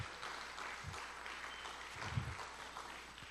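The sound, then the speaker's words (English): A crowd applauds steadily, giving God a round of applause, dense overlapping clapping sustained throughout, with a few faint low thumps and no clear speech. “Can we give God a great round of applause today?”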